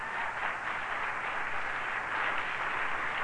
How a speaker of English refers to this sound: Tomorrow is the National Day of Prayer. And it's an opportunity for all, yeah, it's worth clapping for.